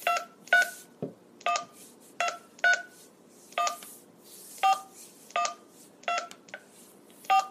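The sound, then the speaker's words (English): A rapid series of touch-tone beeps as a phone number is dialed, about a dozen short dual-pitched tones in an uneven rhythm, clear with no talking. “That phone number is supposed to be 334. Something. Almost done. Just a couple more numbers.”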